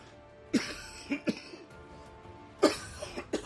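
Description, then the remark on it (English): A person coughs repeatedly in two harsh bursts, a cluster of hacking coughs followed after a pause by another run, with a faint hum underneath and no talking. “Stop coughing my lungs, you over here trying to kill me.”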